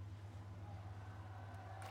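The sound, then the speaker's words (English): A canal boat engine drones with a steady low hum and a faint rumbling chug, fairly loud, with no voices over it, as a brightly coloured boat chugs past on a canal in London. “All cute waterside cafes, rainbow-coloured boats chugging past, and weeping willows dipping into the water.”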